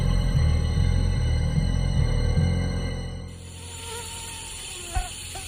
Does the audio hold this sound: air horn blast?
no